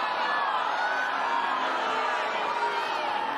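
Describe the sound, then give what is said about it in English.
A large crowd at court 18 at Wimbledon roars without a break as Just Stop Oil protesters disrupt play by scattering orange confetti and jigsaw puzzle pieces over the court, many overlapping voices shouting and whooping in a dense, steady wall of noise for a few seconds. “Well, note the reaction of the crowd.”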